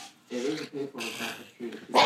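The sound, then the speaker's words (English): A dog whines and grumbles in several short, complaining bursts, each a strained, nasal moan, with a brief breathy noise at the end; she is angry because a person is pretending to bite her paw. “Our dog Jackie is a member of the podcast, too. You'll hear her complain”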